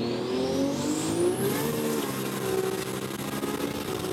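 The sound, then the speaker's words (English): A diesel-powered car on its lowest boost setting accelerates and revs hard in the rain, a loud continuous roar with rising harmonic tones and a high whine sweeping upward, with no talking over it. “It's on the lowest boost setting.”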